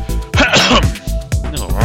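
cough

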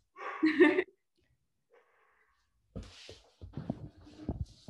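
dog barking

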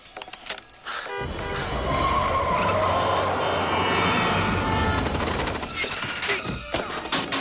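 gunfire

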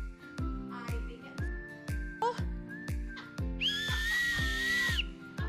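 whistle being blown

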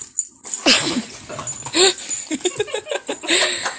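dog whimpering

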